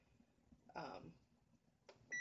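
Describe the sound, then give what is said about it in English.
A kitchen timer being set for 30 minutes while cooking lasagna sauce gives short, high electronic beeps near the end after a brief clatter of handling, all fairly quiet against a low background. “I want to set my timer for 30 minutes.”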